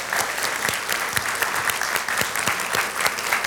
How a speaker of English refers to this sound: So on the count of three, you guys got to give your leaders a round of applause. One, two, three, go. Come on.